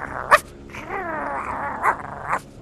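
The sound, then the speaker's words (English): A dog lets out a few sharp barks, with a drawn-out growling, whiny vocalization between them; no one speaks. “Good boy, Admiral Nelson. Smart dog.”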